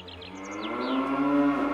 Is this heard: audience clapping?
no